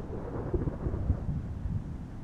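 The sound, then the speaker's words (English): Low, rolling thunder rumbles continuously, a deep muffled growl with a few heavier swells, set against a faint wash that may be rain. No voices are heard. “the blood pump, your heart thudding in your chest as thunder rumbles.”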